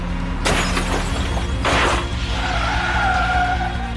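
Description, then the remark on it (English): Over a constant car engine rumble, two sharp crashing bursts of breaking glass ring out as concrete smashes through the windscreen of the moving vehicle, followed by a high, wavering squeal of tires skidding across the road. No one speaks. “the concrete smashed through the windscreen and hit JC in the face”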